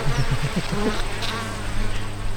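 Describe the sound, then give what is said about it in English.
Honeybees buzz busily at a hive with a lot of traffic going in and out, several overlapping hums rising and fading steadily as they fly by, with no voices over the continuous drone. “There's a lot of traffic going in and out of there.”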